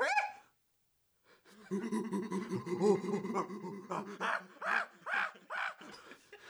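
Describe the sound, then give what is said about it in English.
A monkey news segment intro alarm: a brief cry, a pause, then a loud burst of monkey-like whooping and chattering that builds into a run of rapid, rhythmic hoots, like a playful jungle alarm. “Play the monkey news alarm.”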